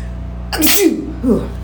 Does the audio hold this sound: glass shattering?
no